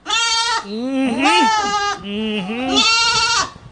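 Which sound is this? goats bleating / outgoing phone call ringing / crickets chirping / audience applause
goats bleating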